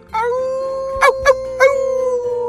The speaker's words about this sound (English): We just received a howl. They rushed to the door and flung it open to reveal a giant shaggy brown werewolf with a slobbery envelope in his mouth.